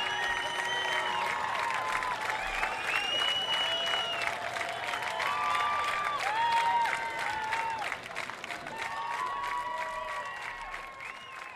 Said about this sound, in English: standing ovation continues here in the rain at Newport